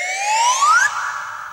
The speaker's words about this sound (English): Or the slide whistle.